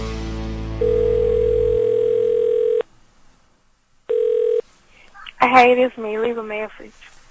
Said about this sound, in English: That would be a wrong number. What did you dial? Must not have gotten the last couple of numbers. Let's try that again.